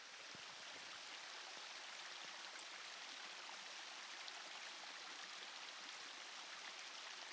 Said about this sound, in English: Yeah, listen to the soothing sound of this beautiful babbling brook